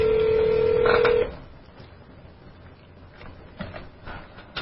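A steady telephone tone sounds for about a second with a quick keypad beep near its end, then cuts off, leaving a quiet, hissy line with a few faint clicks.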